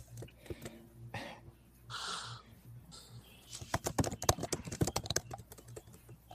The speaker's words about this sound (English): frantic typing.